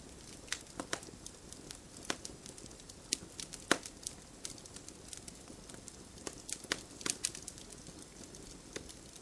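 A campfire crackles steadily, with irregular sharp pops and snaps scattered over a soft, low rumble of burning. The fire is fairly quiet, and no one is talking.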